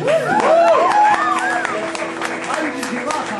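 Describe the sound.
An audience applauds steadily for a few seconds, a dense crackle of many hands clapping, with voices cheering and calling out in rising and falling tones over the top.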